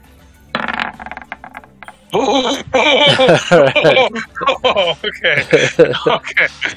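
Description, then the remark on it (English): A short rattling clatter of a d20 die tumbling across a hard table during a tabletop game, followed by people talking and chuckling. “Dice gods are helping me out now.”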